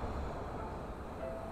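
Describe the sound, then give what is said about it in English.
A steady, heavy rumble of an elevated L train rolling past a place of worship in the Kensington neighborhood, with a faint metallic squeal rising near the end; no voices, just the continuous roar of the passing cars. “Like, the train goes by, everybody just stops talking for a second.”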